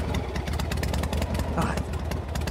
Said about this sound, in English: Oh, he's coming in. Okay, so he's on a motorcycle.